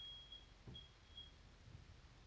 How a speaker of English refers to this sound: What the fuck? Is there a fire alarm? Is that the CO2 alarm going off? Are we all gonna die here?